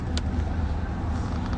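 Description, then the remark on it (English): Steady low rumble of car engines and tires in a busy lot full of cars, a continuous vehicle drone with a brief faint hiss near the start and no voices. “A lot of cars in here.”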